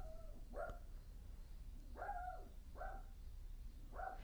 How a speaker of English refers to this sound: So anyways, y'all, my dog is a-barking. I'm going to see what he's up to.